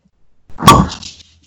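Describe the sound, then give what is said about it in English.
A single soft pop of a cork being pulled from a red wine bottle with a flick of the wrist, with a brief hollow ring and faint rustling afterward; no voices. “And I'm going to try to make this make a pop, but you know how red wines... Flick with your wrist.”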